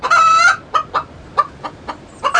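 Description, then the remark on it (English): A chicken clucks at a poultry farm near Bristol, opening with a drawn-out squawk, then a run of short, evenly spaced clucks before another longer call at the end. No one speaks. “I went to a poultry farm near Bristol to find out.”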